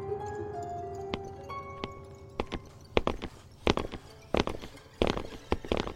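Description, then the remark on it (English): Footsteps echo through an enclosed underground space about 600 feet below ground, sparse at first, then coming quicker and louder as they draw closer. Faint steady tones hang in the background early on, and no one speaks. “We stood still as the footsteps got closer.”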